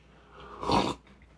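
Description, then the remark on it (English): A single wet, noisy slurp lasting about a third of a second, rising and fading quickly against a quiet background with no talking. “So, sorry about the slurp there.”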